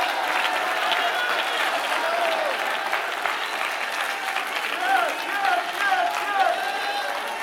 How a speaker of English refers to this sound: Oh, you ought to clap your hands right now, and you ought to shout unto God with the voice of triumph.